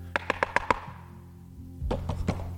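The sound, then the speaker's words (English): Heavy thudding knocks on a door, like police coming in: a quick, evenly spaced run of five loud raps, a brief pause, then three more, forceful with no voices. “oh, they're thudding on the door.”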